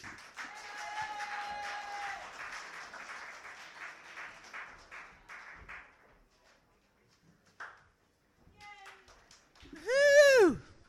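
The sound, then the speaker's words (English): A crowd applauds steadily for several seconds at an open mic night, the clapping fading out, followed by a brief pause, a few scattered sounds, and a loud whooping cheer near the end. “You can clap now.”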